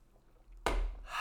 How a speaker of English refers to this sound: Take a drink of some water. Have a little bevy.